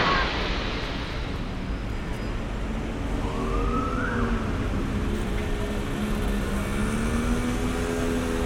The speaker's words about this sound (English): The sound of the traffic can be quite overwhelming, really, right, when you're trying to navigate.